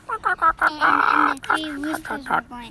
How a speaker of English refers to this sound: And the three roosters were going, what is that?